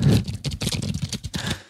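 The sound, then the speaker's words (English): A quick riffle of playing cards being shuffled, a dense run of crisp papery clicks and flutters in bursts lasting under two seconds, with no voices. “Let me shuffle the cards.”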